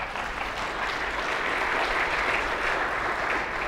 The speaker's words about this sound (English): Everybody give her a nice round of applause.